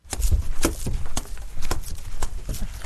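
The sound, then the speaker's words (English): Flip-flops slapping against dirty bare feet while someone walks down a hallway: a steady run of about seven sharp, flat smacks, roughly two per second, with no talking. “and his dirty feet walking down the hallway in his flippy floppies.”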